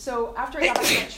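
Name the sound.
sneeze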